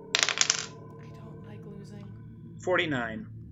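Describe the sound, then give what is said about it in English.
A short burst of percentile dice clattering and tumbling across a hard surface, several rapid clicks, rolled in a game to see how badly a character is hit by a projectile, landing on 49; followed after a pause by a brief spoken voice. “So I'm gonna need you to roll me a percentage dice.”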